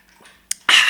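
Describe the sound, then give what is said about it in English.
A short sipping sound: a faint click, a brief pause, then a sudden loud breathy slurp as water is drawn from a bottle. No one speaks. “Here, let me take a quick sip.”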